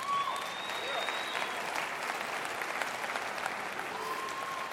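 A crowd claps steadily in a dense, continuous round of applause filling a large room, with a faint whistle or tone drifting above the clapping.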